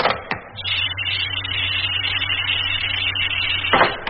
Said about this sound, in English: And open the door.